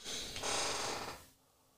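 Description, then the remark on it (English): A single long, breathy yawn, a drawn-out airy exhale lasting about a second before trailing off into quiet. “I got a yawn, y'all.”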